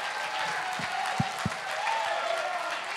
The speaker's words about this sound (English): Come on, if you know that's why you're here, clap your hands one more time and give God the highest praise.